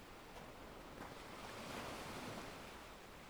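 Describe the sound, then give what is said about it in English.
Steady ocean surf washes onto a beach, a broad continuous roar with a gentle swell in the middle as a wave breaks, heard alone without voices. “And the vast expanse of the ocean stretching out before you.”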